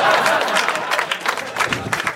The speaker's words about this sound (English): One guy clap.